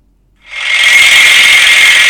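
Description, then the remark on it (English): A handheld pneumatic massager starts up after a brief silence and runs as a loud, steady, high-pitched mechanical whir and buzz with a vigorous vibrating action, unbroken to the end, as it is tried on the body. “got one hand on the microphone here, and got the other hand with this sort of, you know, as I said, it looks like a hand whisker, a pneumatic hand whisker, basically.”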